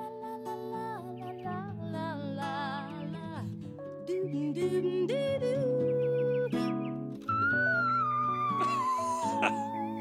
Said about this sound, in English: She had a five-octave range. Five octaves. Yeah. What do most people have? One? I don't know. Two? Yeah. She could sing in what was called the whistle range.